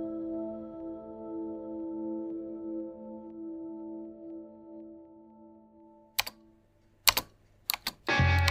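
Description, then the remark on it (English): A few sharp computer keyboard clicks and taps arrive near the end, scattered then bunching into quick typing, after a soft sustained musical drone that fades beneath them. “One night, while on the computer clicking around, I decided to try messaging some girls through Facebook Messenger”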